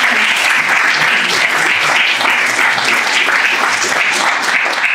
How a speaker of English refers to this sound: So can I get another round of applause?